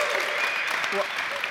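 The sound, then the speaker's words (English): An audience applauds in a show-of-applause vote for Vape Man 69's revealed Harry Potter as the most interesting leak of 2018: a dense, steady wash of many hands clapping that holds at an even loudness throughout, with faint voices mixed in beneath it. “They're just applauding his name.”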